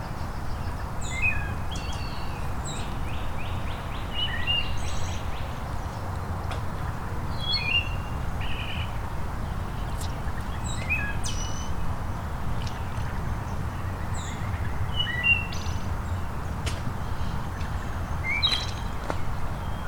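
Birdsong from a waterthrush and a red-winged blackbird, scattered chirps and short phrases repeating across a steady outdoor rumble, with no voices.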